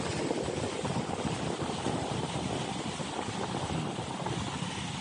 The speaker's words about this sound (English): This makes me calm. Watching boats on the water. Here in the ocean. The symphony of supply chain is moves along.